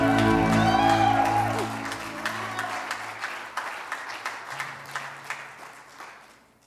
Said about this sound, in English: Clap their hands tonight.